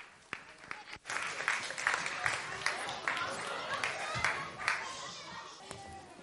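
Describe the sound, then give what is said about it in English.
An audience breaks into sustained applause, a dense crackle of many hands clapping at a steady loud level, with a few sharp individual claps standing out and faint voices mixed in. “Can you give all these guys a round of applause?”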